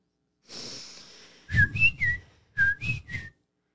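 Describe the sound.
A person whistles bird calls: a breathy hiss, then two quick bursts of three bright, chirpy notes that bend up and down in pitch, whistled alone with no talking.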